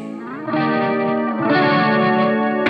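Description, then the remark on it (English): A band setting up, with a heavily effected electric guitar ringing out sustained, distorted, shimmering chords that swell louder partway through, a steady wash of tone with no talking. “I hear the band setting up.”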